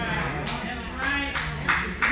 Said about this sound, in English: That's a clap. I don't know why.